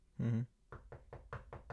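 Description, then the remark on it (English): A quick, even run of about six fairly loud knocks on the door of a rich person's house in La Jolla, preceded by a short voiced sound. “He knocked on a random La Jolla-an rich motherfucker's house.”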